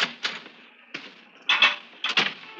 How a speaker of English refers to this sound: I opened the door and stepped out briskly onto the street.